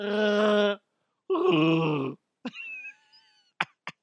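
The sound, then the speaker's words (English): A person imitates a Chewbacca growl: two drawn-out, raspy, throaty roars separated by a brief pause, followed by a few sharp clicks and a thin, wavering high tone. “Or making Chewbacca sounds at random times during the day at work.”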